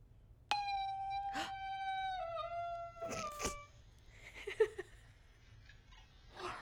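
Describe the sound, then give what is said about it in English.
A female dog lets out one long, drawn-out howl that holds steady and then slides downward in pitch, clear, recorded by a Furbo pet camera, followed by a few softer, scattered noises with no talking. “Like, what were you howling at?”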